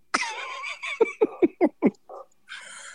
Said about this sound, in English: Speaking of acting a fool, my dog. What was that?